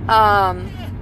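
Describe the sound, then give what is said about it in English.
Steady low rumble of a car interior while driving to New Jersey, about 30 minutes into a 4.5-hour drive, a constant droning hum underneath, with a brief sustained voice sound rising over it near the start before fading back into the road noise. “You know, been in the car, I think like 30 minutes, almost 30 minutes now.”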